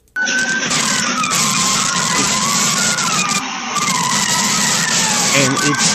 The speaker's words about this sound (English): And the car it is pushing is absolutely sideways. He's not pushing it from the back. He's not pushing it from the front of the vehicle. He's sideswiping the vehicle and pushing it on all four tires sideways.